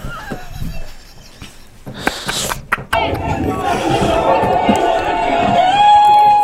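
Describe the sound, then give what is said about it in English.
A dense crowd roar swells up partway through, many voices cheering and shouting together at a steady loud level, with a sustained tone running beneath and scattered thumps before it. “Why are people cheering?”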